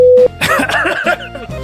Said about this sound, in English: What, did you cough too?